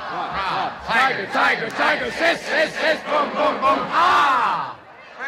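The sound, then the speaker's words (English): A crowd chants the Princeton Locomotive, a Princeton college cheer, in unison, voices rising and falling in steady bursts, building toward a loud, drawn-out shout near the end. “The cheer is called the Princeton Locomotive, and they're still doing it to this day.”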